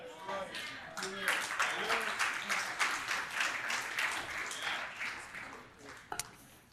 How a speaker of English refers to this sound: Oh, some of y'all are just clapping because I'm done with that point.